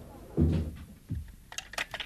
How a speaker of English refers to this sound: It's all right. I'll close the door.